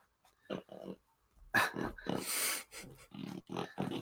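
A small female pet dog snorts and grunts in a series of short, noisy bursts, sounding much like a little pig, with breathy snuffles between the louder snorts.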